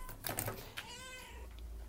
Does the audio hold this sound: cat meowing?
yes